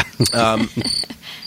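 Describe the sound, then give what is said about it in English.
High, thin cricket-like chirping in a few short bursts, apparently made by a voice imitating a cricket, fairly loud, with voiced vocal sounds around it. “He's been turned into a cricket.”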